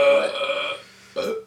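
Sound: burp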